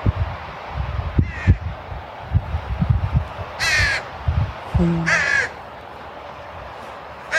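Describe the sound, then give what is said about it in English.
A crow caws outdoors, a few harsh, rasping calls spaced apart, over a background of low rumbling and soft outdoor noise. “We don't need to name the bird, even know the bird.”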